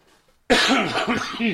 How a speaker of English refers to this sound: As you hacking, coughing away. Are you all right? Yeah. Can you breathe?